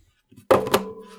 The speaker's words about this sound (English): I just threw my phone at the garbage. Well, don't do that.